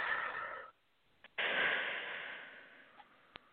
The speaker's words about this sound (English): Breathing in all that goodness. Exhaling all that goodness.